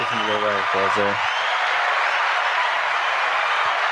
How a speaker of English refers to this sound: So send him a round of applause.